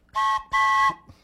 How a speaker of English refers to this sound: Let me blow that whistle one more time.